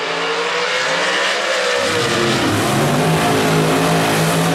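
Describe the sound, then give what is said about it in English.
A drag racing car revs hard, a loud, raspy engine roar with shifting pitch that deepens into a heavier rumble partway through and stays at full volume to the end, with no talking. “All right, let's make a pass. Let's get these things hot.”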